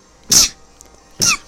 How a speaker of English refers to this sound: Fuck, I hate sneezing.